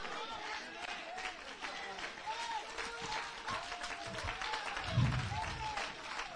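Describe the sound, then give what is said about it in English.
An audience claps steadily and densely throughout, a continuous wash of many hands with crowd murmur and brief voices rising underneath, swelling slightly near the end. “You know why some folks ain't clapping?”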